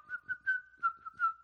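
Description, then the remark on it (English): A person does a traditional whistle, a steady, clear tone that holds nearly level for about a second and a half, with soft breathy pulses riding along, fairly quiet. “That's the traditional one, that's right?”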